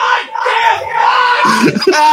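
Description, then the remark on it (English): A person lets out a long, strained scream of frustration, held loudly for about two seconds before breaking into rougher, choppier bursts at the end. “Can I leave for a minute? And within screaming range of your microphone.”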